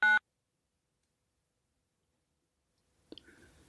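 A short, loud electronic phone beep signals a call ending, cutting off into silence for a few seconds before faint rustling noises start near the end.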